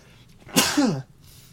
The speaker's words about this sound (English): And we still haven't been able to afford a sneeze button, but that's all right. Yeah, it is what it is. Damn allergies.